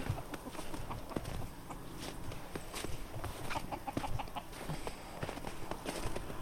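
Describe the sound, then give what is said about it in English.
Chickens cluck and squawk in a busy, continuous stream of short, choppy calls, with a quick run of higher notes midway over scratchy, rustling background noise. “chicken squealing.”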